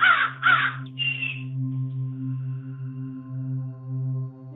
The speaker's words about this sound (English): Are you outside right now? Are you outside getting your vitamin D boost? I am, yeah. You can hear the crows. I can, calling away in the background.